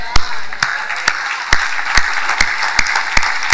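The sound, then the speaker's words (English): A crowd of people clapping together in worship of Jesus Christ, in a steady rhythm, sharp loud beats landing roughly twice a second over a dense, continuous wash of applause. “I want to make sure my hands are clapping for the King of Kings.”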